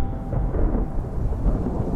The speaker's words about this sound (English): Suddenly, the sky roared with thunder.